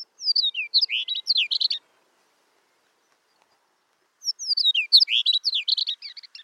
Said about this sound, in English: The cheerful-voiced chestnut-collared longspur gets along well with the cattle that share its northern prairie breeding range, for the most part.